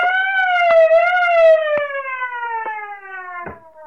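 A truck's auto alarm system, set off after the lock was broken open, blares in a loud, steady electronic wail whose pitch sags slowly downward, punctuated by four sharp knocks spaced about a second apart; no one speaks.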